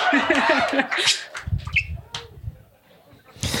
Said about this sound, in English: that bird is a part of this conversation and I would never dream of removing the bird